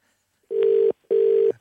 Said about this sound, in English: It's time to make the cash register call. Count the rings.